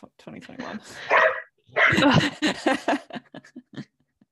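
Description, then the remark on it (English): Dogs bark and yip in excited bursts in the morning, a dense flurry of overlapping barks giving way to a string of short, quick yelps that trail off. “dogs are really enjoying chatting this morning.”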